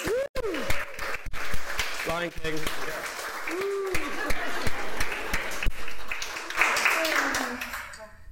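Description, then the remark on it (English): An audience applauds steadily throughout after a dedication prayer, a dense wash of clapping with scattered cheers and voices calling out over it, loud before tapering off near the end. “Whoa, round of applause.”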